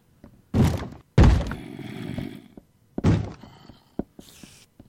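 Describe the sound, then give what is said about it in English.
A monster trying to bust through a door: three heavy, booming thuds, spaced unevenly, each followed by a rattling, resonant decay, with a fainter knock and a short scrape trailing after. Loud, with no talking. “Busting through one of the doors. Or trying to.”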